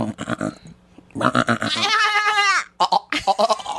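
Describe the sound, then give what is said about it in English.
A person does a loud, quavering goat bleat lasting under a second, its pitch wobbling as it trails off, with brief bursts of talking just before and right after. “taught me how to do the goat.”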